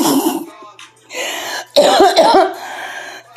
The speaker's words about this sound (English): Stop coughing on podcast air. That's one of the side effects. What are you going to do?